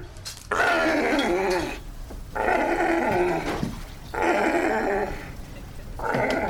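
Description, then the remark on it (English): A distressed sea lion growls loudly while researchers in a chain-link enclosure trap it in a net and hold it down, four drawn-out, rasping roars separated by brief pauses, with no talking. “As the researchers walk into the chain-link enclosure, the sea lion spasms and tries to run away.”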